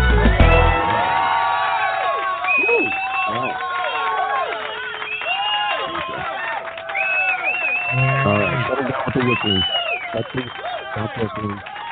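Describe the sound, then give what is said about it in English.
A loud, lively crowd cheers and whoops without pause, with shrill whistles cutting through now and then and excited voices shouting over one another. “I don't mind them cheering and all that, but the whistling is like right in my ears, and it's too loud.”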